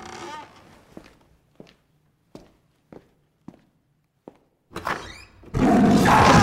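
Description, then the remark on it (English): Knocking on a door: six sharp, single knocks spaced unevenly, followed by a brief scuffle and then a loud, sustained rushing noise at the end. “Do you want to stay there and just keep listening to the episode? Or do you want to answer that door?”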